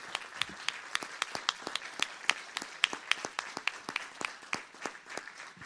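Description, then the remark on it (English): An audience at High Point claps steadily in appreciation of a guest. It is a dense patter of many hands with sharp bright individual claps poking out, sustained at moderate volume throughout without any voices. “Why don't we give our guest a hand clap of appreciation?”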